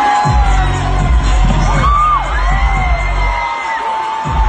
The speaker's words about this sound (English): Again, she's getting the crowd hyped. And then you hear the reaction when she falls, the gasp from the crowd.